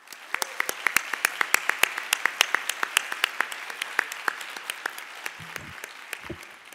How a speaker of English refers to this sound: Please join me in giving them a tremendous round of applause.